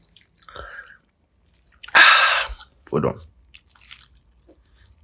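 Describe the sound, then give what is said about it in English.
Chewing and swallowing of food, with a loud crunchy burst in the middle and softer mouth noises around it, briefly interrupted by a few quiet spoken words. “Let me finish swallowing.”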